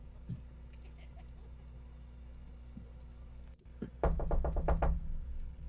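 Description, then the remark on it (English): Quiet room tone with a few faint taps, then a sudden rapid burst of about five or six loud knocks on a wooden door. “I'm gonna not do anything for a second and just grab my weapons and get on the edge of the bed and wait to see if he knocks again.”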